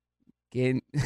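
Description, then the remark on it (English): A loud cough right into the microphone: two short, harsh bursts, the first slightly longer and throaty, the second quick and breathy, with silence around them. “You just coughed into the mic.”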